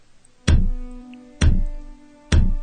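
A door knocker is slammed against a door three times at an even, steady pace, each strike a loud, heavy metallic bang with a low boom and a brief ringing decay before the next hit.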